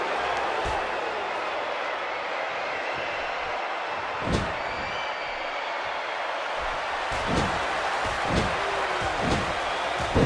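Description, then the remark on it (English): A few heavy, booming thuds as a wrestler is slammed onto the ring mat with a tilt-a-whirl backbreaker, spaced irregularly over a constant roar of a large arena crowd. “DDP hits a tilt-a-whirl backbreaker”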